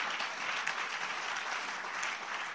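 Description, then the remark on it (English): Steady audience applause, a dense wash of many hands clapping at an even, moderate loudness throughout, with no voices rising above it. “I thought you clap for that.”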